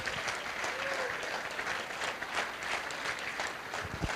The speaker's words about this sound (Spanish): Sí, dale el aplauso al Señor si quieres.